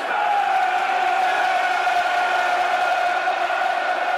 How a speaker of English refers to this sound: Crowd trying to get some pep and some extra spice into the Millwall mixture, the Millwall masala. Trying to put some chilli into the mix, liven it up a little bit.